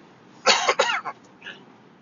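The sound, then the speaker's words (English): A short burst of loud coughing: two or three harsh coughs in quick succession, followed by a softer throaty catch, with quiet background around it and no talking. “Excuse me while I cough.”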